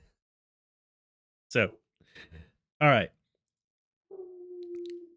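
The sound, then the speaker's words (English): A pet dog howls in a steady, sustained low tone for about a second, following a few short spoken words from a person. “I don't know if y'all can hear that, but he's howling.”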